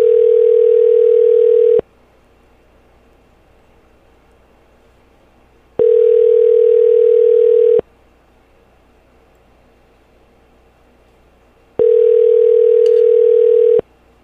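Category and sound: signal or alarm, telephone ringback tone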